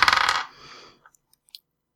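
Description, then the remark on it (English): Dice rolling across a table for an attack roll in a tabletop role-playing game: a loud burst of hard clattering, a short fading rattle, then a few faint, scattered ticks as they settle. No voices. “Then I want to do Thundering Steel. And let me roll, and if it works, I'll describe it.”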